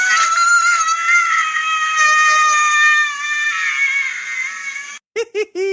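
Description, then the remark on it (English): A boy in a film scene lets out a long, shrill, sustained scream, loud, holding for about five seconds before it cuts off into a few quick, clipped vocal bursts. “What I love is it's kind of just the same scream he does when he puts the aftershave on his face.”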